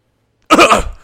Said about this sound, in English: Oh no, I just coughed corona into you.